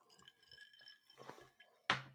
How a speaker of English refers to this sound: I see or hear you sipping on that breakfast cocktail this morning. Oh yeah, it's happening. Give us a little taste.